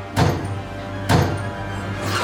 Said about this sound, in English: Huh? What's going on? Commander Conqueror, the door just opened on its own accord.